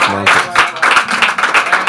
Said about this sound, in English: I thought you clap better.